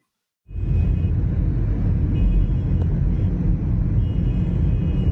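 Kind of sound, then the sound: vehicle, highway traffic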